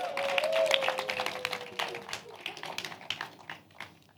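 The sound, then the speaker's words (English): An audience claps together, a dense patter of many overlapping hand claps that stays fairly loud before thinning out slightly near the end. A faint steady tone sounds underneath at first. “Clap, clap, clap.”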